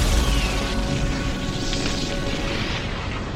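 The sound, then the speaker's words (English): A massive, sustained explosion roars with deep rumbling low end and a broad crackling wash of debris, loud, holding steady for several seconds without speech. “The party grabs the loose papers from the base of the spire and run for cover, just as the arcane remains overload and a huge explosion tears through the passage just behind them.”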